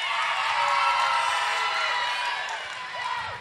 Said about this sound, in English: These are getting just as many boos as claps.